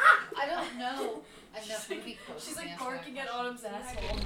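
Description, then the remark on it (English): A female dog barks and yips repeatedly in short, high-pitched bursts, fairly loud, with a brief low rumble at the very end. “She's barking”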